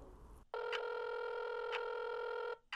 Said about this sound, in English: I dial my phone, putting the phone on speaker so I can keep cleaning.